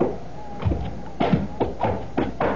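Footsteps climb wooden stairs in a run-down house: about six hollow thumps at a steady walking pace, clear, with no talking.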